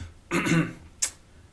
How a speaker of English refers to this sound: I have allergies, so I'm going to clear my throat, and then I'm going to try to do my best Bank of America voice again.